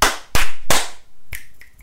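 Three loud, sharp hand claps in quick succession, followed by two crisp finger snaps with a brighter, ringing click. No voices are heard.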